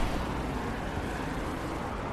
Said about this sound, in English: So at this busy main intersection, you can hear the traffic.